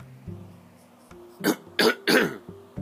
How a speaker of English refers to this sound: Sorry, cough.